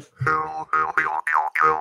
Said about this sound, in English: There's the David S. Goyer mouth harp.